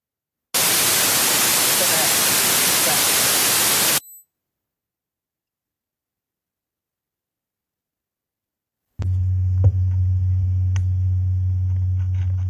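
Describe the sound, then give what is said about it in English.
A loud, harsh burst of static hiss fills about three and a half seconds, cuts off abruptly into silence, then a low electrical hum with faint crackles begins. “It was like some extreme static, like loud static.”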